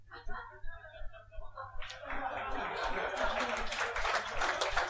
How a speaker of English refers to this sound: Clap him. My favourite kind of applause is a smattering, so thank you so much. Nothing better, because the thing I love about a smattering is it takes as much effort